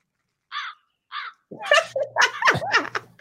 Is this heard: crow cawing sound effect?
yes